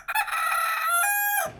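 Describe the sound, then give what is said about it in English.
A rooster on a farm crows once, a loud, strained cock-a-doodle-doo with a rising and falling harmonic call that stretches for over a second before cutting off. “Let me spell it for you. R O O S T E R Rooster.”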